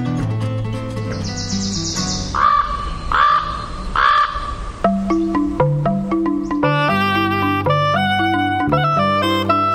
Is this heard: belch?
no